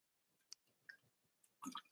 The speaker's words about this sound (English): Get my sip of water.